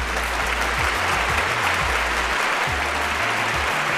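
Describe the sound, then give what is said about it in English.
Loud, continuous roaring applause from fans, dense clapping filling the whole stretch without pause, with a low steady rumble underneath and no voices standing out. “Thank you, fans, for the roaring applause, as you guys are always here for me every single Friday night”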